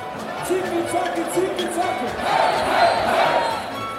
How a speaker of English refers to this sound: Welcome to Sprockets. I'm your host, Dieter. Thank you very much for your kind applause on my entrance. I always like a warm hand on my opening.